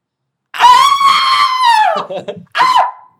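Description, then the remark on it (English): A voice imitates a terrified movie scream: one long, loud, sustained high-pitched shriek, then some ragged breathy sounds and a short second scream burst at the end. “It's such a great scream. Yeah, you love this scream. I love this scream.”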